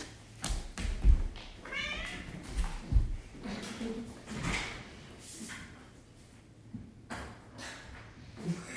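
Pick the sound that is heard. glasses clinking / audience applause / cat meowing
cat meowing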